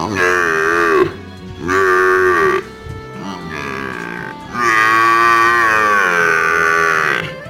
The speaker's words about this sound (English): Do you sound more like a wet cat? Or a wounded water buffalo in heat?